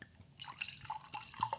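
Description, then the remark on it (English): Wine, a 2015 from Carneros just outside Napa Valley, pours into a glass, a steady splashing trickle with small gurgles and bright, rising ringing tones as it fills. Nobody speaks. “I'm going to pour myself a glass.”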